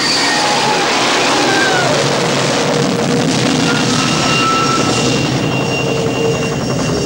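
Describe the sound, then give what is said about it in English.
A loud, continuous howling engine of the TV show aircraft Erwolf in flight roars steadily for several seconds, a dense rushing drone threaded with faint whining tones that drift in pitch. No voices are heard. “Erwolf let loose with a horrendous howl when it flew.”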